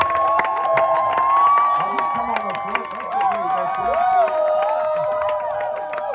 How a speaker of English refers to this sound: Clap your hands for the woman of God.